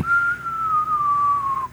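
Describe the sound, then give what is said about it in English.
A single mouth-whistled tone glides slowly downward for nearly two seconds, clear, a voice imitating the whistle of a body thrown off a roof as it falls, before cutting off. “And it goes because we put little whistles on it to draw attention.”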